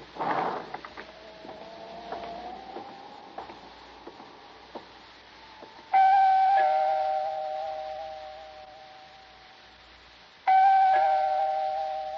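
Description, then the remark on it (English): A doorbell rings twice at the single apartment on a seventh floor, each a bright, ringing tone that starts sharply and slowly fades, following a few seconds of faint clicks and shuffling. No one speaks. “I see the door's open like it usually is, but maybe you better ring, sir.”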